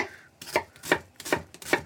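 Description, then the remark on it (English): A knife chops an onion on a cutting board: four crisp taps at a steady, unhurried pace, with no voices present. “I know I've said it before, but please learn how to cut an onion properly.”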